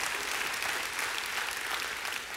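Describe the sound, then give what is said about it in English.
A church audience breaks into steady applause, a dense, even wash of many hands clapping at once, sustained and fairly loud throughout with no voices standing out. “And you can clap for that.”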